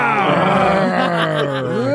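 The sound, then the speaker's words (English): Several people loudly imitate a tiger's roar as a thank-you to Law Tigers. Their voices overlap in a sustained, growling, drawn-out cry that wavers in pitch for about two seconds. “Well, thank you, Law Tigers. Roar!”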